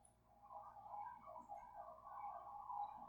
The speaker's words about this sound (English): Hey, birdie birds.